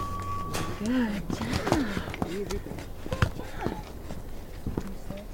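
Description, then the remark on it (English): Horse hooves clop along at a steady walking pace, with irregular hard knocks on the ground and some indistinct vocal sounds mixed in, as the horse Ra is walked over towards a horse trailer. “walks Ra over towards the horse trailer.”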